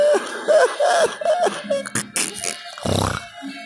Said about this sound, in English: Ooh, I was coughed up a storm right there,